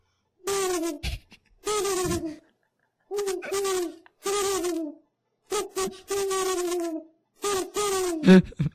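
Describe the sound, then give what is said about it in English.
A loud owl hoots over and over, about eight harsh, distorted calls in quick bursts separated by short silences, with no other sounds around them. “This one is an owl.”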